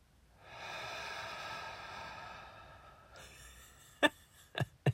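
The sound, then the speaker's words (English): Loud, exaggerated breathing by a preacher breathing on people gathered around him during a church service: one long, heavy, raspy exhale, then a few short, sharp snorting puffs of breath. No one speaks. “I just started breathing on everyone.”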